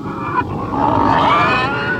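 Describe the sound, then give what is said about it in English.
A person imitates a pig, making loud, continuous grunting and squealing noises for a couple of seconds, rising into a sustained nasal squeal partway through. “That's all I'm going to do with the pig noises.”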